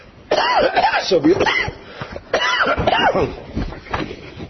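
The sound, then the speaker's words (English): Two loud bouts of harsh coughing and throat clearing, each a cluster of rough bursts with a raspy voiced edge, separated by a short pause. “For those of you who are wondering, it's true, I'm still coughing.”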